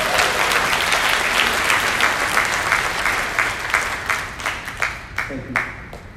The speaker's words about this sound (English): Give me a great big hand clap for all of that.